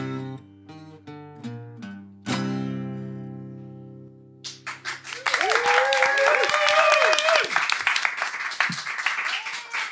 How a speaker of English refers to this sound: The crowd loses their minds. Singularity TV is going absolutely crazy.